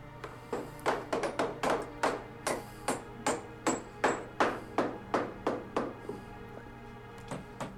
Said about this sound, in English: Hammer time. See how high up she's choking on the hammer? That's the reason she can't drive them.